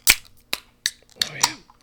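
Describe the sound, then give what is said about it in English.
Beer cans, one of them a Heady Topper, crack open one after another, five sharp, bright pops spaced about half a second apart, the last two trailed by a brief fizzing hiss and faint murmuring. “Spray there. Coming in hot.”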